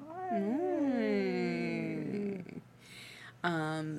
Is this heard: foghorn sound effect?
no